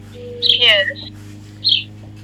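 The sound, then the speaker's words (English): Backyard birds chirp: a bright, fluttering burst of tweets, then a shorter chirp a moment later, over a steady low background hum. “Someone's got birds.”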